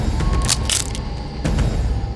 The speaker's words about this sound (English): But curiosity clouded her sight, and she stepped on a twig that let out a loud snap.